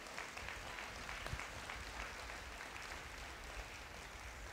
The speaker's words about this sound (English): Let's give them a godly round of applause for their efforts.